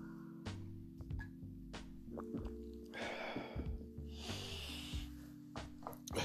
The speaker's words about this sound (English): Just before I get started, let me get a sip of water so I can clear my throat.